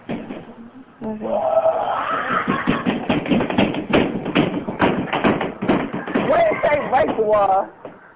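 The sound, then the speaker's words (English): Repeated loud thuds of someone banging on the walls in an uneven rhythm, while a voice imitates hooting, screeching monkey calls over the top, energetic. “You're going to need to bang on the walls while doing the monkey sound.”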